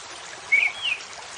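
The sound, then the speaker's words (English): A steady wash of dark river water rushing over smooth, large rocks on a cold night fills the whole moment, with two brief, high bird chirps rising above the flow midway through. “Soon, you are out of the woods and directly facing the rolling river, its dark water rushing over the smooth, large rocks.”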